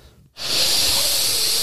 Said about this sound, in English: Oh my God, he's taking fucking pride sniffs. Breathe it in deep.